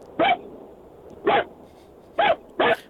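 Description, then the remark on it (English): A person imitates a small poodle's yapping bark, four short sharp yips in an uneven rhythm, fairly loud against a quiet background. “that was the poodle.”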